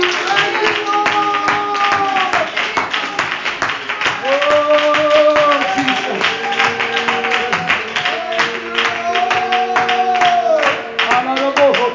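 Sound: audience clapping hands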